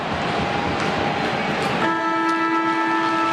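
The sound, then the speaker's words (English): At Adelaide Oval, during an AFL match between Port Adelaide and Collingwood, the stadium siren marks three-quarter time. A loud, steady, horn-like blare cuts in about halfway through and holds one pitch to the end, over the constant roar of the crowd. “Siren sounds for three-quarter time.”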